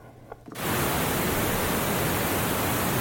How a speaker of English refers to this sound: here I have, so I'm using pink noise because it's got all frequencies. If that needs to be louder, let me know. But this is just a very simple high pass filter we're looking at.